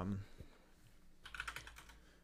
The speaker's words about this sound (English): Hey, I know my keyboard typing is a little bit loud right now. Watch this. Sorry guys. This is bad timing.